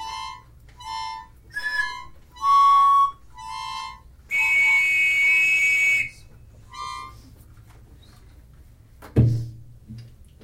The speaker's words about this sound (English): Dragon ocarina and pan whistle.